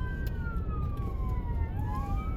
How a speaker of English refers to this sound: Sirens everywhere.